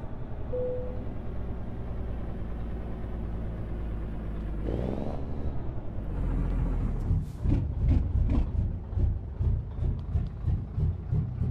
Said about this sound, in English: That lope engine, though.